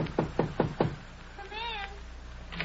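Four quick, evenly spaced, firm knocks rap on an apartment door, followed by a brief high, wavering cry like a meow and a short burst of sound at the end.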